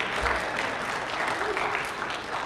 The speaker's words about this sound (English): I've never heard applause for a bulletin. It's fantastic.